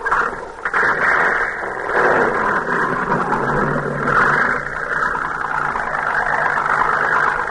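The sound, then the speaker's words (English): A boat engine drones loudly and steadily as the vessel pulls away, a continuous mechanical roar with a faint rise in pitch and no voices. “Pilot, get this boat out of here.”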